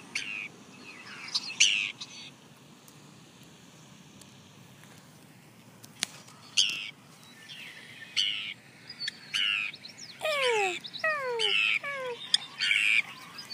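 A Forster's tern across a bank gives a series of harsh, grating, downward-slurred calls, scattered at first and then coming in a quick run near the end, over a faint outdoor background.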